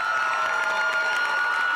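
A large crowd at Nauset Regional High School on Cape Cod cheers and applauds as a singer is brought to the stage, in a steady, dense roar, with high-pitched shouts and whistles sustained throughout and no pauses.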